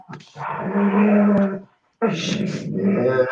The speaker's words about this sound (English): Sorry, it's mad. The dog's deciding to try and bite each other's faces off here.